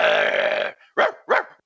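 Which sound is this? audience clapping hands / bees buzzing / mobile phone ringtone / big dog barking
big dog barking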